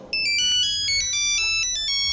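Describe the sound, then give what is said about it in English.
A mobile phone ringtone plays loud, a bright electronic melody of quick repeating beeping notes that continues throughout, with no one talking. “Oh, shit, it's for me.”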